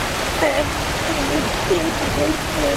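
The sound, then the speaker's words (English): Steady, loud rushing water pours without a break from a fire hydrant mounted on top of a race car called Fire Hydrant Head, blasting at full force. A faint voice seems to murmur underneath the torrent. “This car is called Fire Hydrant Head because there is a fire hydrant on top of the car that is exploding with water every single second.”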